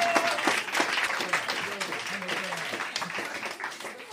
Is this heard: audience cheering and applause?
yes